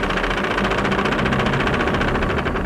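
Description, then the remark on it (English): A boat engine runs steadily in reverse as the boat backs up to set its anchor, a loud mechanical drone with a rapid, even knocking pulse throughout and no voices. “I'm going to back up the boat and set the anchor.”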